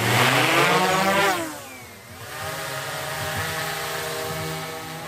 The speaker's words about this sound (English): And really kind of what tipped us off that they were there is the lights of the drone and that buzzing noise.